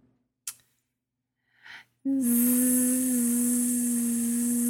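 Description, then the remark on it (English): After two short breathy sounds, a woman's voice launches into a loud, steady buzzing hum with a hissing spray over it, imitating a water flosser running continuously for a few seconds, as a sound drawn from a hat for others to guess. “The water pick. Flossing your teeth.”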